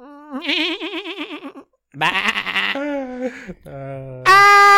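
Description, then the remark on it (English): A person imitates a goat with a string of loud, quavering bleats, the wavering voice breaking into short pieces and ending in a strained, higher cry. “Do the goat noise.”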